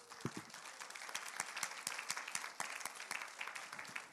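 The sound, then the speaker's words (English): A church audience at a morning service applauds and cheers for the Lord steadily for about four seconds, dense overlapping clapping at an even loudness, with a few voices briefly cheering near the start. “Could we give the Lord a big cheer before we sit down?”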